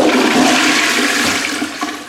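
A toilet flushes, a loud, steady rush of swirling water that fills the whole two seconds and tapers off slightly at the end, with no one talking.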